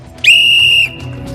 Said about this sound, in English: All right, here we go. Can we have a whistle, ref? Yep.